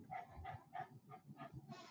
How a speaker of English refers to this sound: You hear that dog? Yeah, I told you he's getting him excited.